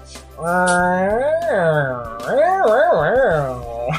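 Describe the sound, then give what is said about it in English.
A person's voice imitates a cat, giving a long drawn-out meow followed by a few shorter wavering mews, loud with no other sounds. “And he turned into a kitty and...”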